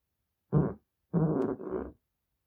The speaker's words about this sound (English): Real fart upcoming.